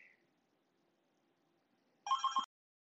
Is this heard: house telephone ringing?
yes